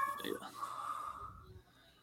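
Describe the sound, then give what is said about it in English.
A cat lets out a single drawn-out meow, moderately loud, over faint breathy background noise before the sound fades to near quiet. “You're going to have to kick the shit out of that cat or something.”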